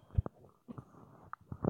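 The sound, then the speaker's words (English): A microphone tumbles over with a burst of heavy thuds and clattering knocks, a loud low thump first, then several scattered bumps and rattles as it settles. “My mic dropped, sorry.”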